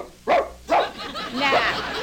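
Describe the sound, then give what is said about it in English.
An attack dog named Brutus barks, three sharp, loud woofs spaced irregularly over a couple of seconds, the last one longer and rougher. “Oh, and we'll have to retrain our attack dog, Brutus.”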